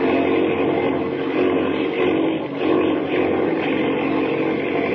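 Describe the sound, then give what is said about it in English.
A propeller airplane engine roars steadily at full power, loud, with a brief dip in the middle as the plane is brought out of a spin, then surging again. “Grab the controls. Bring her out of that spin.”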